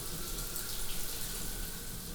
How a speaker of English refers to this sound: I take a shower, a long shower.